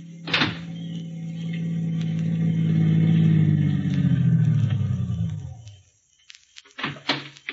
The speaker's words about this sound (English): A car down there at the foot of the hill just turned in your driveway.